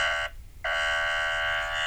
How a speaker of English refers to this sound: Everybody's playing the ringtones. What's going on?